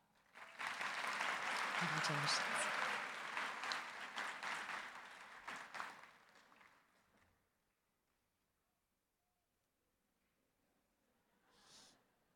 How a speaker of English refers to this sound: Please join me in a round of applause for the 2023 LLM graduates.